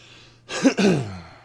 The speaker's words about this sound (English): I know that's not a sneeze. No, I was just clearing my throat.